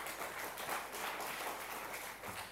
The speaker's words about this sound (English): Are you clapping because it's true? Or you are clapping because you believe it?